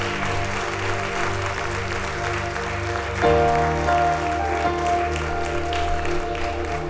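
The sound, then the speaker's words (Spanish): A standing church audience at a morning service applauds the Lord loudly and steadily for the whole stretch, a dense crackle of many clapping hands layered over sustained keyboard chords that shift midway and swell slightly louder. “Si le vas a dar un aplauso al Señor, dáselo fuerte.”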